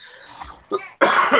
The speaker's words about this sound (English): I'm not actually dying. My cough just makes me sound like it.